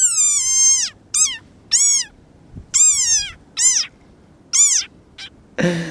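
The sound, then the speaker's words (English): A frog gives a series of about six shrill, high-pitched squeaks, each sliding downward, loud with short pauses between, ending in a brief rustling burst. “Famous for their hilarious body and squeaking call, which they seem to make when they're threatened.”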